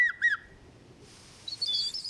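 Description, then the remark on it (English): An ornithologist who imitates birds whistles bird calls: two quick rising chirps, a short pause, then a high, bright warbling trill, clear with no talking. “These two are bird imitators, ornithologists who mimic our feathered friends to perfection.”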